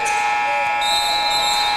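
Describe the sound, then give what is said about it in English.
A loud, steady arena buzzer blares without a break for about two seconds, a harsh, rich tone: the end-of-third-quarter horn at a boys basketball game between Coldwater and Portage Central, with faint crowd noise beneath it. “took the shot right after the buzzer sounded, so after three quarters, it is Coldwater 42, Portage Central 42, final quarter of regulation.”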